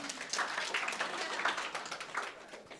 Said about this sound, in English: 48 years of work and effort and toil. He deserves a Harley. Big round of applause.